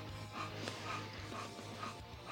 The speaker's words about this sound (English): That's Otis. If you hear something loud and monsterish, it's just a bulldog.